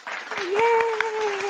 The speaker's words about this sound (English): Yay! We got cheering too. Cheer. There we go.